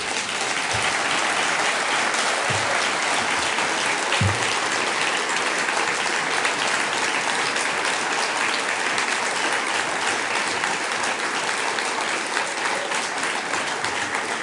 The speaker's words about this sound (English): Are you clapping? I can't hear anymore.